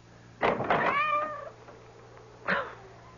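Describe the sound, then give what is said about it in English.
A soaking wet cat meows at the front door in the middle of a clear night, first a long, drawn-out wavering meow and then a shorter one after a pause, clear over a faint low hum, with no one speaking. “That cursed cat.”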